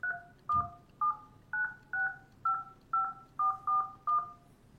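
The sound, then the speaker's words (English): A rapid series of about ten telephone keypad tones as a registered phone number is punched in on a call to a support line, each short dual-pitched beep clear, with slightly uneven spacing and no talking. “Please enter your registered support phone number.”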